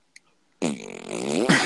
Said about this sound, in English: Now, it wouldn't be coming out that easy if he was getting the official fart sound.